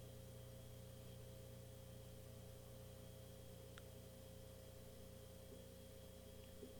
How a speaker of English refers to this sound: My fucking fridge is so loud.